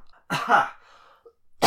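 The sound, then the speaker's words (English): A single loud, harsh cough, trailing off into a breathy exhale, with the start of another cough right at the end. “Cough count, too.”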